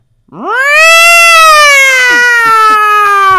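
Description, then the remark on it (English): A bobcat scream: one loud, drawn-out cry that sweeps sharply upward, then holds a high, harsh, wailing tone for about three seconds, slowly sagging in pitch. No one talks. “Bobcat is picture like your normal house cat at about 4 inches to height”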